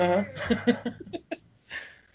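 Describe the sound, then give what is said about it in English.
A female pet gives a drawn-out yawn that turns into a tonal whining vocalization, followed by a few short breathy pulses and a soft exhale. “She just yawned. Yep. She yawn talks.”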